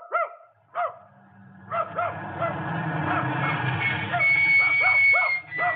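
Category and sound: animal, dog barking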